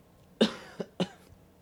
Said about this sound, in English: God, I feel like I'm in the geriatric ward right now with this cough. Mercy.